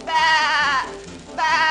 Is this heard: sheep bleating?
yes